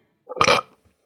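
A single loud burp rumbles directly into the microphone for about half a second, then cuts off into silence with no talking around it.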